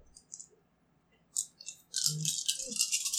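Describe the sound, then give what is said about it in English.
Dice being rolled for a 10k9 roll in a tabletop role-playing game rattle and click, starting with a few short, light taps and then building into a continuous bright clattering rattle that runs through the final second and a half. “Here's the roll.”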